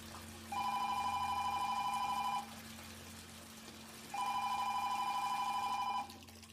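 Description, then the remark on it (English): A telephone rings twice on the line during a call to the police emergency number, each electronic ring lasting about two seconds with a short pause between, loud and clear over a faint low hum, with no one speaking. “Her eyes widened, and panic set in as she reached for the phone and dialed the police.”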